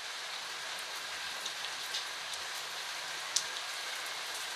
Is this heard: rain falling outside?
yes